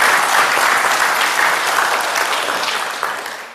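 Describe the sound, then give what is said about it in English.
A church audience bursts into loud, sustained applause for members who have come to the church for 50 plus years, a dense wash of many hands clapping at once that holds steady before starting to fade toward the end. “Can we just give them all a really big clap?”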